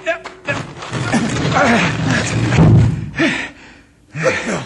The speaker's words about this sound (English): A tunnel. I thought so. That rock swung open just exactly like a trap door. Perfectly balanced. The ancient Aztecs built those tilting doors to hide the entrance to the mines.